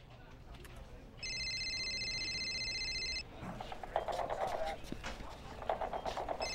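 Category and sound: signal or alarm, satellite phone ringing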